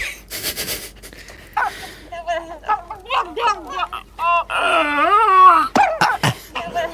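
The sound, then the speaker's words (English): A string of throaty calls, mainly sounds monkeys make with their throats, with a couple of sounds not from monkeys: warbling, rising and falling wails and short hooting grunts, some loud and wavering, after a couple of harsh breathy bursts at the start, with no talking. “This is the sounds that they make with their throat.”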